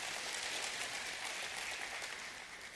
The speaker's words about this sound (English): My wife is a machine. You're the most amazing mom and wife. I don't know how. Y'all can bless her with a hand clap. She is. She is.